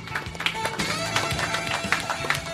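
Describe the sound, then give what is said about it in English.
A small group of three people claps in a little studio, the claps loose and unsynchronized, sharp hits scattered steadily across a couple of seconds at moderate volume. “We can applaud.”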